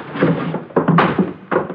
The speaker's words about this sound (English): Here we are, number 11. All right, stand clear. I'll try the door. Mm-hmm. It's open.